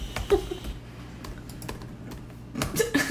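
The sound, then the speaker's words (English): Quick, irregular clicks of a computer keyboard as someone types a search, with a burst of keystrokes at the start and another flurry near the end, over a faint low hum. “I'm really typing the wrong thing.”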